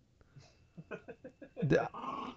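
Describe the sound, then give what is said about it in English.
A small dog named Chico lets out a quick series of gruff, rhythmic grumbles, then a sharp, higher bark followed by a sustained rough growl, moderately loud. “as soon as I can get this little guy just going quit barking for a little moment right here.”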